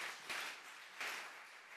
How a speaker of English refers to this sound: And Do give them a round of applause. They're pretty special, this bunch.